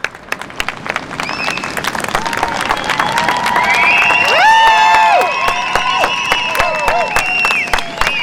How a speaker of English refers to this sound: Eventually, the silence was broken by loud cheers from protesters on both sides of the border.